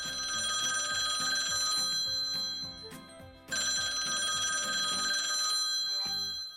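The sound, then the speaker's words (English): A telephone bell rings loudly in two long, rapid metallic bursts separated by a brief pause, its bright, shrill tones sustained and insistent throughout. “In 1876, Alexander Graham Bell applied for a patent for the telephone.”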